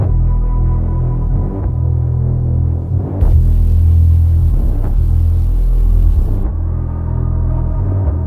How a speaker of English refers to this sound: So he made a sub melody, combined it with white noise that matched the frequency of the sub, and put it through some distortion. You can actually hear some of these sub parts in the final game if you listen closely.